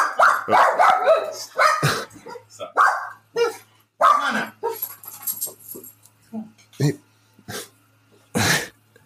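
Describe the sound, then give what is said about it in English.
A dog barks repeatedly in short, sharp bursts, with voices talking in between and underneath the barks. “Yes, yes, the dog can be in the episode.”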